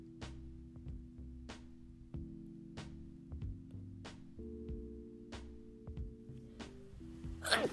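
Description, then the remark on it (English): A soft beat with steady ticking percussion plays quietly, then a single sharp, loud sneeze bursts out right at the end. “Oh shit, excuse me. I sneezed.”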